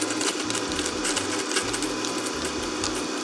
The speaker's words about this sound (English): And we're going to actually blend this before we put the ice cream in, right? So we're going to put this on our medium setting. Hello. I'm just chopping it up. Make it a little bit higher.